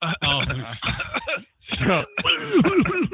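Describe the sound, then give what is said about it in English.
A voice puts on a loud, exaggerated fake cough, a run of rough, throaty bursts broken by a short pause, ending in a few strained, voiced hacks that bend up and down in pitch. “The ridiculous big fake cough.”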